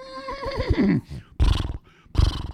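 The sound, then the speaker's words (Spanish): A person imitates a horse, giving a wavering, whinnying neigh followed by two short, loud, breathy snorting bursts, with no other talk. “Yo imité un caballo que es...”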